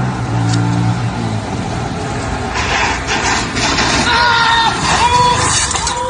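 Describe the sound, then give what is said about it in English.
A motorcycle engine revs loudly and steadily while the motorcycle is on fire, its low rumble opening with a strong harmonic drone before turning into a rough, noisy roar, with faint shouting and crowd noise mixed in behind it. “Oh, the whole motorcycle's on fire.”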